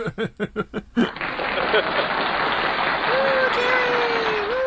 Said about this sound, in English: I love that. Listen to those cheers. Oh, my God.